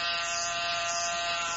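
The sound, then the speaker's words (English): An apartment doorbell buzzer sounds in one steady, unbroken electric buzz, harsh and fairly loud, holding an even tone for under two seconds with no voices. “Meanwhile, at an apartment in another city, the doorbell rang.”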